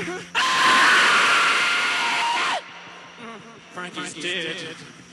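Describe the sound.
A loud, harsh scream tears through a wall of distorted noise for about two seconds, then breaks off with a falling pitch, leaving quieter murmuring voice sounds behind.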